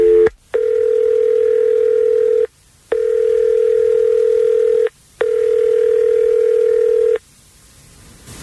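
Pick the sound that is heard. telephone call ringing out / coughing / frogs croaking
telephone call ringing out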